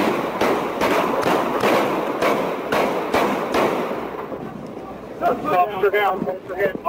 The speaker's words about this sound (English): So there were two officers that were shot, and the suspect, as you heard, took a whole lot of gunfire there and later died.